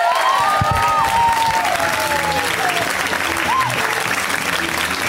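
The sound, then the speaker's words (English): Steady, dense applause from a comedy show audience for a comedian finishing his set fills the whole stretch, with a few whoops and whistles rising above the clapping before it begins to thin slightly toward the end. “Give it up for Cameron.”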